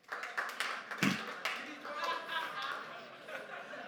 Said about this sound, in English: So it's Super Bowl Sunday. How many of you, by show of clapping or yelling or whatever, are Patriots fans today?